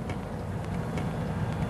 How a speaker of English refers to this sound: Oh, look at all this traffic. Oh, they didn't get held up in it. I wonder what's happened. Looks like some kind of accident.